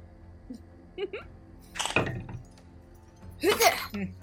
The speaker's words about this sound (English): Pause for Ice Maker.